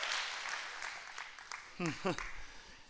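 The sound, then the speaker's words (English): An audience claps in a steady, diffuse wash of applause, with a couple of short vocal shouts rising over the clapping near the end. “I think you ought to clap your hands, not for me, but for him.”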